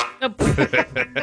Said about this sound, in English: I don't know why it makes me laugh. It's like a goose buzzer. You feel like you have to jump out of your chair.